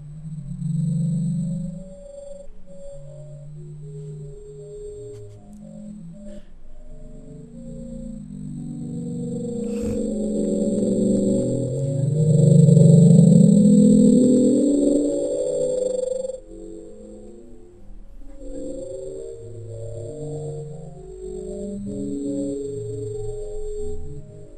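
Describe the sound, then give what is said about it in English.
An unidentified deep-ocean underwater recording known as the Bloop, recorded several times in several places; the sound moves and is not seismic: low, murky rumbling tones that warble and swell into a rising sweep midway, with a thin steady high whine running above and no voices. “And so this is the sound they just picked up and they've never been able to identify?”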